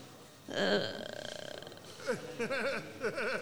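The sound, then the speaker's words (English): A loud, buzzy fart sound begins abruptly and sputters in rapid pulses, then trails into a series of wavering, squeaky tonal bursts. “There goes another backdoor sneeze, followed by the backdoor breeze.”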